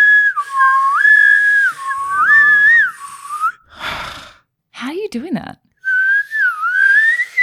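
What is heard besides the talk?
human whistling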